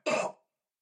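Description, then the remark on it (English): A person imitates a single deep, rasping smoker's cough, a bronchitis-type deep lung cough: one short, harsh burst lasting about a third of a second, then silence. “It's a bronchitis sort of cough. It's going to be more of a... like a smoker's cough.”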